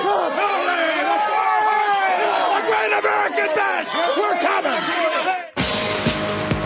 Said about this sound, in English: They're yelling, Ole, Ole.